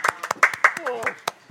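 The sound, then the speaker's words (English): Quick hand clapping: around ten sharp, uneven claps over a second and a half, with a brief vocal sound mixed in partway through. “Actually, I'd like some applause.”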